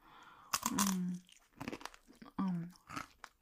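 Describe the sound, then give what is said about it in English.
Crisp crunching of high-quality hay being chewed, in several loud bursts over a few seconds, broken up by short voiced murmurs between bites. “Are you sure? It's nice and crunchy.”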